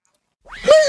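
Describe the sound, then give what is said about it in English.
After a moment of silence, a person lets out a fairly loud, wavering high-pitched cry imitating a horse's whinny, still going when the sound cuts off. “That's me, but where's the professional horse?”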